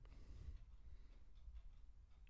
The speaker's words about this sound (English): And that's a lot of clocks. I don't even know. There was a lot Can of clocks. Can you hear the clocks?